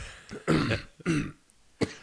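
Someone coughs and sputters after choking on a drink: three harsh, raspy bursts, the first two longer and strained, the last short, with brief quiet pauses between and no talking.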